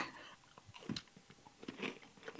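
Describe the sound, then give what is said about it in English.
Chewing of a half-stale chewy cookie with Sour Patch Kids, sticky and slightly crunchy, with irregular wet smacks and soft crackles repeating steadily for a couple of seconds, no talking. “This is halfway between a chewy and a crunchy. It's a stale.”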